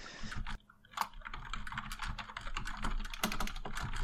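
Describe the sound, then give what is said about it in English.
Rapid, steady typing on a computer keyboard, with clustered clicks and key taps continuing throughout and a brief pause near the start. “What can I buy the Goss with so he gets distracted while typing?”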